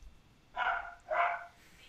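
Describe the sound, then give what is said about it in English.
A dog barks twice in quick succession, two sharp, moderately loud woofs about half a second apart, heard alone against a quiet background. “Maybe that dog has the answer.”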